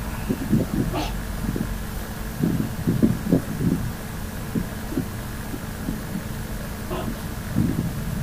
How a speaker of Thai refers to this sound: ใครเปิดพัดลมมาเนี่ย หนูเองค่ะสักครู่นะคะอาจารย์เดี๋ยวปิดให้